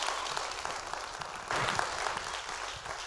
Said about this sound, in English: It's a breakthrough. Clap your hands. Come through the break.